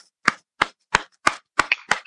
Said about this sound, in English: Well, you're just like clapping chalkboards. I'm clapping, and I'm just clapping, you know, for myself. I mean, I guess you can hear my back a little bit.